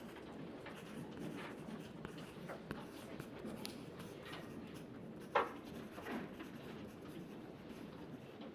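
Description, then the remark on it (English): Quiet rustling and soft dabbing as tissue paper dipped in a papier-mache mixture of glue and water is pressed onto the flat bottom of a bowl, with light crinkles throughout and one slightly sharper tap partway through. No one speaks. “Let's start by dipping a piece of tissue paper into paper mache mixture. Then we need to stick the piece of paper onto the bottom or flat part of the bowl.”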